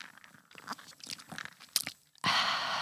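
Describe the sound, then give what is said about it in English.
Crackling and clinking of ice cubes in a glass of whiskey on the rocks, with small sipping sounds as it is drunk, ending in a sudden steady hissing rush. No one speaks. “We are drinking whiskey on the rocks. Oh, I said it sounds like rain on a tin roof.”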